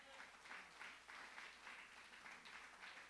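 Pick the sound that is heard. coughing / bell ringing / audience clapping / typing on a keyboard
audience clapping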